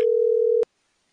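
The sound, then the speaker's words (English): A single steady electronic telephone tone holds for just over half a second, clear and prominent, then cuts off abruptly with a click, leaving silence. “Yep, that means phone calls later on in the show”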